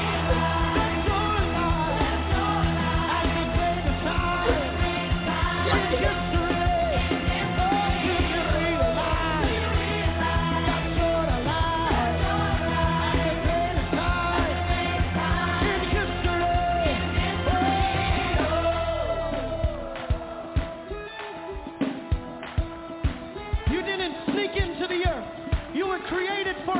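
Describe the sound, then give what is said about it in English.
An audience screams and shouts loudly in response to a preacher's call to scream, a dense, sustained roar of many voices over what sounds like music, before the crowd noise thins and fades in the last several seconds. “Somebody scream!”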